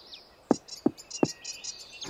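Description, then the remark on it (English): Small birds chirp and twitter in quick, high-pitched bursts, moderately loud. A few soft low thumps fall at roughly regular intervals underneath, and nobody speaks. “Are those birds doing your hair?”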